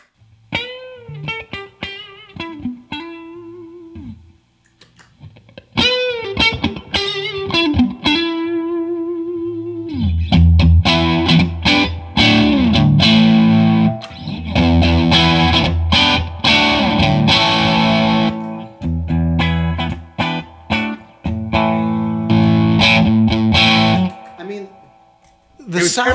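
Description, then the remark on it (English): A Telecaster electric guitar plays a bluesy phrase with bent notes in a clean tone, then, through a gain overdrive pedal set to about 3 o'clock, switches to a louder, thick, gritty overdriven sound with dense chords and riffs for the remainder. “And the gain, I'm going to put at about 3 o'clock. So quite a bit of gain, because it's a Tele.”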